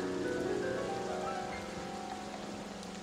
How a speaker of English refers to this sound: The torches went out because it's raining, okay.